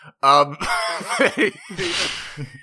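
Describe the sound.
A person makes a loud, exaggerated cough: strained, voiced bursts followed by a rough, breathy hack, over in a couple of seconds.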